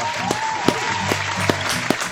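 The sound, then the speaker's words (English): An audience at Live from the Dutch Hall applauds for Canada, the day after Canada's 148th birthday: a steady, dense wash of clapping with a few sharper claps standing out, and a brief whistle rising above it at the start. “Hey, a little applause for Canada.”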